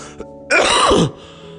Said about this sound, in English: That cough, though.